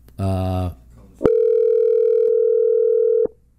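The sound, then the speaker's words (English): A steady, unbroken telephone line tone hums at a fixed pitch for about two seconds during a call-in to The Mouthpiece show, preceded by a short burst of buzzy, harmonic-rich noise and ending abruptly. “Limit our phone calls to where that phone starts to, where it starts beeping?”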